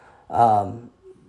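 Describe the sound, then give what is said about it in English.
A single loud, low, rumbling snore from the pet Latte, lasting about half a second with a buzzing, throaty tone, followed by quiet. “There's Latte snoring.”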